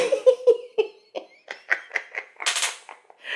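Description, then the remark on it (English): A small glass chair creaks and cracks under someone's weight: a quick, irregular string of sharp snaps and groans, with one louder, harsher crackle near the end and no voices. “When you hear them cracks, I'm just sitting in this little glass chair.”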